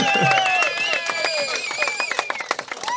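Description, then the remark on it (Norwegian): An audience applauds: dense, steady clapping sustained for a few seconds, with raised voices calling out over it, the claps growing a little sparser toward the end. “Jeg synes vi tar en applaus for.”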